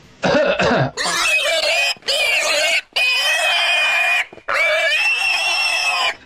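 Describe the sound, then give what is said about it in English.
A person imitates a pig with a rapid series of loud, nasal grunts and squealing oinks, several bursts with brief gaps between them, without any talking. “Recorded live deep in a pig pen where we're making out with swine to bring you H1N1 Influenza A.”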